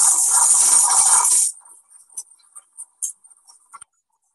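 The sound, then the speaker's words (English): A machine crushes dangling glass into powder with a loud, harsh, steady crunching roar for about a second and a half, then stops, leaving scattered faint high clinks and tinkles of settling glass. “Oh, do you want to see a video of it being crushed?”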